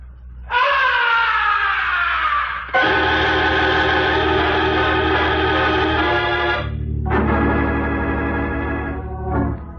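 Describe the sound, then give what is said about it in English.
A loud, blood-curdling scream rings out from high above the stage of an opera house in three long, sustained bursts, the first sliding downward in pitch, with no talking around it. “From way up in the heights of the stage, the opera house was pierced with a blood-curdling scream.”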